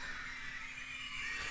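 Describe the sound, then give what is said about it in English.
A dense, high-pitched wash of children screaming together, sustained and steady for over a second, then swelling into a sudden loud burst at the very end. “Just children screaming. Screaming kids.”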